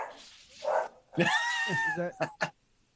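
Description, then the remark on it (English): Dave's dog barks while a tortoise attacks it: a long, drawn-out yelping bark followed by two short, sharp barks in quick succession, with some rustling noise beforehand. “A tortoise is attacking Dave's dog.”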